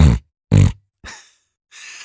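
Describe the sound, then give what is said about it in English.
A voice imitates a pig with two short, deep, throaty grunts, like a hog rooting, almost like a cough, each followed by a raspier, breathier snort-like burst, evenly spaced and with no talking. “So, the piggy noise. It's like this low grunting.”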